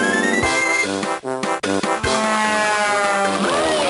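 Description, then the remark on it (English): Dense, busy audio from Banjo Pilot, a 2.5D Game Boy Advance kart racing game with airplanes: bright chiptune-style music layered with whooshing and buzzing effects, loud and continuous with a couple of brief dips, no voices. “There's a game out there called Banjo Pilot, and it sounds like this.”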